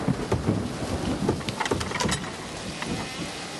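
A thunderstorm with steady, hissing rain and low rumbles of thunder rolling underneath, plus a few sharp crackling bursts partway through before the downpour settles into a constant wash.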